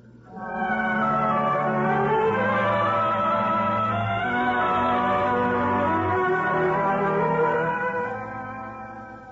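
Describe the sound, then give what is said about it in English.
Church bells clang together in a sustained, overlapping peal, their ringing tones layered and fairly loud for several seconds before slowly fading. “I hope we can sleep without those bells clanging over us.”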